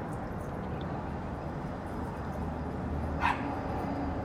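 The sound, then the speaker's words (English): A single short dog bark rings out near the end, over a steady outdoor background rumble. No one speaks. “Another dog get on my nerves all day, walking back and forth, and he bark at everything.”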